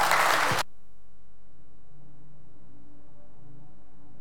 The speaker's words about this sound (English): Everybody say amen. Amen. Amen. Give the Lord a good hand clap if you will.